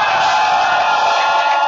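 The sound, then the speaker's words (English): An audience claps their hands for Jesus and gives the Lord a shout together in a dense, loud, continuous wash of crowd noise, with individual claps blurred into the steady roar of voices. “Go ahead and clap your hands and give the Lord a shout.”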